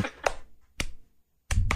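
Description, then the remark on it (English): A woman claps her hands in a radio studio: five sharp, crisp claps in an uneven rhythm, two quick ones, a lone clap, then a pause before a final pair. No voices. “You're clapping. You do not want to be clapping right now, do you?”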